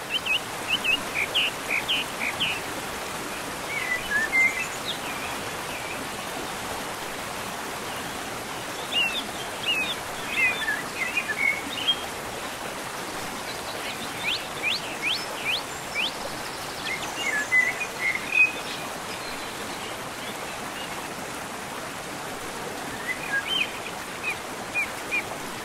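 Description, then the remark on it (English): Outdoor nature ambience: a steady wash of flowing water fills the background while scattered birds chirp in short bursts. No one speaks. “Sounds of nature, they're great. The total silence, sounds of water, anything non-artificial.”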